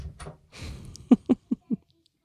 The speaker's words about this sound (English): And then close both doors, please.